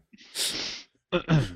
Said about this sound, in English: Our guest this week, he just coughed.